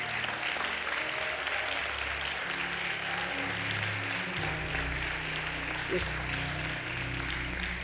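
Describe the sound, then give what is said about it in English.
A crowd claps steadily for several seconds to welcome Bishop Johnson, who just walked in from Fort Myers; dense and sustained applause over a low hum of background voices and tones. “Clap your hands, welcome Bishop Johnson, who just walked in the door from Fort Myers, just walked in the door.”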